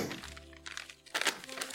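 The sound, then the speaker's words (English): Brief crinkling of taco wrapper paper in a few quick bursts, the loudest near the end, over a steady low background hum. “Keep your taco paper. I'm still gonna keep it. I'm gonna wrap something else in it.”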